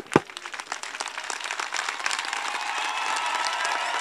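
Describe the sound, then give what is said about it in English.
A crowd breaks into applause, clapping for God in thanks for the free light of the sun, many hands clapping in a dense, crackling wash that swells and holds steady for several seconds, with no voices standing out. “Can we clap for him?”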